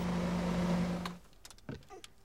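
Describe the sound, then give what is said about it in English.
A steady, loud car engine drone, as heard by the driver inside the cabin, hums for about a second, then cuts out, leaving a few quiet clicks and mechanical knocks. “manufacturers commission experts to analyse and refine the engine vibration, tyre and wind noise, and engine noise as it's heard by the driver.”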